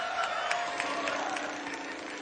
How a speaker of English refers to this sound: Hey, they're cheering for you. Right on. A little bit.